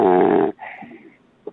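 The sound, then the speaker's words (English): A loud, buzzy snore rumbles for half a second, then trails into a softer, breathy rasp, with a brief faint snuffle at the end. No talking. “Is this a real snore?”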